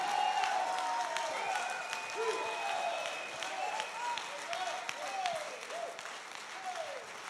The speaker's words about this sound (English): Well, go ahead. If you're one of them, clap those hands and let God know that he has somebody to work with.